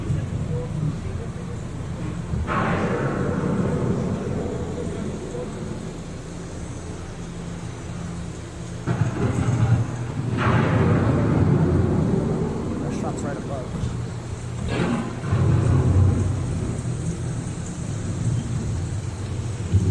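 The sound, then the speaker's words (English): Deep thunder rumbles of an approaching storm roll in over steady rain, with several broad booming swells building and fading across the stretch, loud, under a constant hiss of falling water. “The approaching storm may seem violent and destructive to us, but to nature, it's a new beginning in the cycle of life.”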